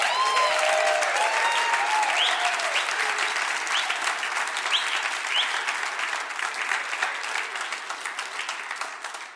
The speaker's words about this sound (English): will you just erupt with applause and love for this man?